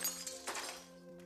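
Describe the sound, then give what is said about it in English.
Multiple magical barriers shatter like glass: a few sharp crashing bursts in quick succession, followed by a sustained, ringing shimmer that fades out. No one speaks. “The barriers shatter.”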